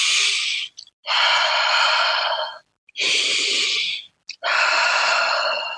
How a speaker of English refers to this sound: You are connecting to this very moment through the breathing. And you take a few concentrated breaths like this.